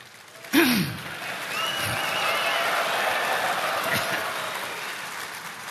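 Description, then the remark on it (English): A large audience at Shepherd's Conference breaks into steady applause for a speaker's 40th anniversary at Grace to You, after a brief vocal reaction at the start, the dense clapping holding at an even level throughout with no talking over it. “Don't applaud for me. Applaud for the people who've had to put up with me for 40 years.”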